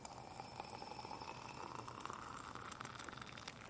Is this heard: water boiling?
yes